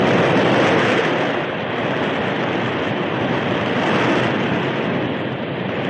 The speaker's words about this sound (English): The flood rushed by. Hungry waves broke at the very feet of the horses.